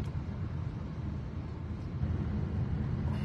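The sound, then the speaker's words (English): A heavy, steady low rumble of a huge truck, its engine drone swelling slightly as it moves past, with no talking. “It's a huge truck right there.”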